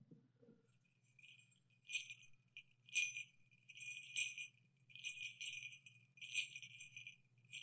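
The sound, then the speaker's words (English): Sleigh bells jingle softly in a steady, shimmering stream that swells into brighter shakes every second or so, with a low hum underneath and no voices. “I wonder if you can play sad sleigh bells.”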